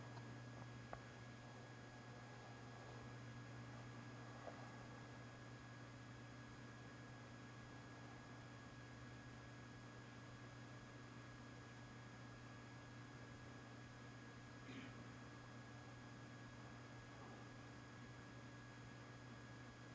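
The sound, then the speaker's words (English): A steady, low mechanical hum and soft airy hiss of an air conditioner run continuously during a moment of silent prayer, with no voices and only a few faint, brief clicks. “You might hear the air conditioner.”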